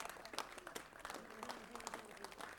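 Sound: audience clapping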